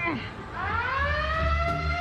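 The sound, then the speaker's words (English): A loud alarm siren at a Planet Fitness gym, set off when someone is flagged as a lunk, wails, its buzzy electronic tone sweeping upward and then holding steady for a couple of seconds over a low background rumble. “They even had bright lights and giant loud sirens.”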